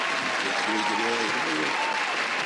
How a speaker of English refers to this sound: Yeah, let me give you the applause.